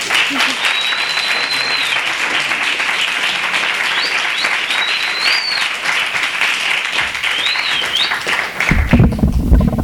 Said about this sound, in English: Hello. I hear someone whistling, so it's got to be my oldest friend in the world who's over there.